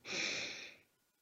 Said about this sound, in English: And what that means is not multitasking, but really taking a deep breath. In through the nose, all the way to your toes, and then out through your mouth, like through a straw. Take another beautiful breath.